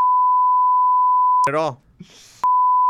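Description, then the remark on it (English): A loud, steady censor bleep tone beeping out something said sounds for over a second, breaks off for a brief burst of speech and breathy noise, then returns sharply at the end. “I'm going to beep that out of this show.”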